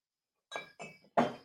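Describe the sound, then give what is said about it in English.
Three bright glass clinks in quick succession while bourbon is poured, each ringing briefly with a sharp attack and short decay, the last one loudest, heard alone without any talking. “That's a good bourbon. Thanks, Uncle Mike, for picking it up. I might have another pour.”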